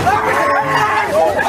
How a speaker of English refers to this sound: But messages like this were quickly drowned out by the noise of a rowdy crowd.